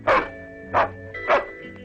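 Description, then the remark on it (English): Three short, bright barks from a cartoon super dog, spaced evenly about half a second apart and loud, with a steady tonal musical hum continuing underneath, like a cartoon soundtrack. “You silly super dog.”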